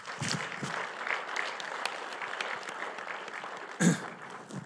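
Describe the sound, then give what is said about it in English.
A crowd applauds Chairwoman Mallory, chair of the Council on Environmental Quality, introduced as a panelist; dense overlapping clapping at an even level throughout, with a sharper burst of claps near the end and no voices standing out. “Chairwoman Mallory, if you'd please give her a round of applause.”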